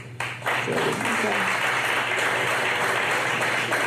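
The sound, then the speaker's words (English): An audience claps and applauds steadily after a brief quiet start to vote on a fill-in-the-blank question about who should be the Cleveland Browns head coach in 2019, a dense, loud wash of hand claps that holds for several seconds, with voices mixed into the noise. “So when you clap and applaud, when you're filling in the blank.”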